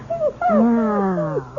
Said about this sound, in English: Yes, yes, that's a good dog. Good, good boy, Attila.